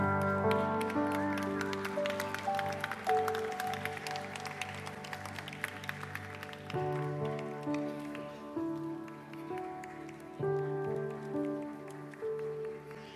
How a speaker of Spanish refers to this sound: Buen trabajo, chicos. Ahora sí creo que les podemos dar un aplauso.